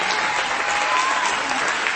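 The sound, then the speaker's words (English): An audience stands and claps their hands to the Lord in praise, a dense wash of many hands applauding at once, loud and sustained without pause, with a faint murmur of voices mixed into the crowd noise. “Come on, stand to your feet and clap your hands to the Lord and give Him praise.”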